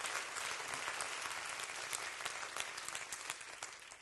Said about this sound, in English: If you feel like standing up and taking a break, just stand up and clap your hands. Stand up, whatever you feel like doing. Just clap your hands. Clap your hands. Rejoice.